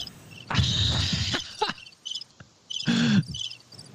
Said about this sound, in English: I hit my crickets button. Sorry.